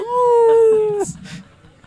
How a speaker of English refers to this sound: We're slashing prices with a werewolf? Oh, then he's got a howl afterwards.